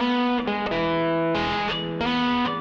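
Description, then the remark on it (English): Heavily distorted electric guitar, run without amps through software that digitally models vintage guitar gear, plays thick, buzzing sustained chords that shift every half second or so, loud and steady throughout with no voices. “They can buy a cheap electric guitar, run it through a pedal board, a laptop, even a phone, and sound like ….”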